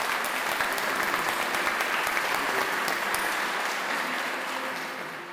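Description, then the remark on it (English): Sustained applause from a large crowd fills a huge reverberant hall at a summit, celebrating the agreement of the SDGs just after the hammer is banged and the words "It is so decided" are spoken. Dense clapping holds steady for several seconds before starting to taper off at the end. “banged the hammer and uttered the words, It is so decided, the applause from the crowd resounded in the huge hall.”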